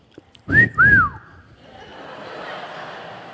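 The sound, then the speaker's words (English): A loud two-note wolf whistle from a grandfather whistling at good-looking angels during youth prayer, a quick rising note then a longer swooping one, followed by a soft wash of background noise that could be a faint crowd murmur. “And he started to whistle at the good-looking angels and say how beautiful they were.”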